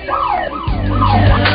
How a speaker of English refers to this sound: we're going to get this alarm turned off, I hope, or we're going to move the show outside, and we'll be back in a moment.